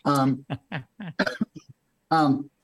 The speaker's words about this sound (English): No, I had COVID and I still got this cough, but I already forgot the question.